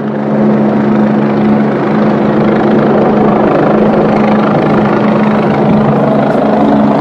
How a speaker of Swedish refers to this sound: Och när vi kommer ut, då är det en alltså militärhelikopter då. Okay. Inte en vanlig polishelikopter, utan sån här stor jävla svartgrön Sverige.